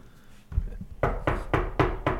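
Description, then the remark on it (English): Knuckles rap on a countertop in a computer store: five evenly spaced, fairly loud knocks in a steady rhythm, after a couple of softer taps. No one speaks. “Is anyone, I'm knocking on the countertop.”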